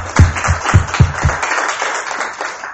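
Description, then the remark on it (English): A short burst of applause from a small audience, with several distinct claps in the first second before settling into a steady patter of clapping that softens toward the end. “A round of applause”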